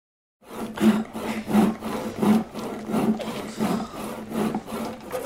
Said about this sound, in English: What are you doing? Sawing, Uncle. You told us to saw. And we're sawing. Making slow work of it. Put your backs into it, boys, or I'll give you sore asses too. Use this saw. It's made for the job. Let it do the work.